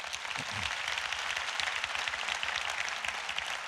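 A crowd breaks into steady applause, many hands clapping in a dense, sustained wash of sound that holds at an even loudness throughout, with no voices coming through.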